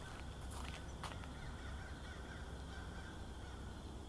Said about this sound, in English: Can you hear the bird?